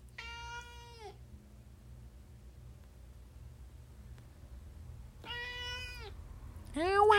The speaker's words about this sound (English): And I'm not exactly sure on this one what he was doing, but I thought these were good meows. I thought these were original Marv productions.